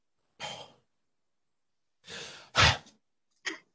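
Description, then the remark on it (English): Breathy exhalations and short air bursts, then a louder, rough burp that rumbles low for a moment, followed by one last brief puff of breath. No one speaks. “And hold on, I got a wide burp.”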